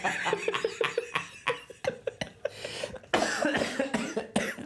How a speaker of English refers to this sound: Oh, my God. You gave me smoker's cough with that.